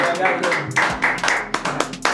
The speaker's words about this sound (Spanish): Suene fuerte ese aplauso.